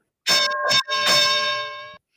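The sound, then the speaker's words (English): A bell is struck in about three quick, loud clangs, its bright metallic ring overlapping and then fading out over roughly a second. No one speaks. “So yeah, ring the bell.”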